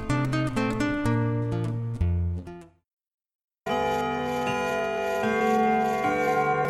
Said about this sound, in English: As the big clock chimed 12, men stationed at different parts lit the gas simultaneously,